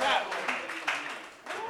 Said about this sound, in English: Monroe Martin, everybody. Round of applause for Monroe Martin.